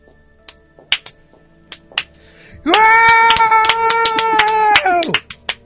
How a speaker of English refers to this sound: Slow clap.